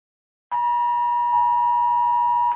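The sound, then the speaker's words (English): A loud, harsh UK government emergency alert test tone bursts abruptly from mobile phones and a tablet, including a phone set to mute, and holds steady without a break, a piercing electronic drone with no talking. “Yes, the phone that is on mute is also ringing.”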